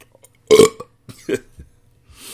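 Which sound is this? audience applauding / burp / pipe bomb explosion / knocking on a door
burp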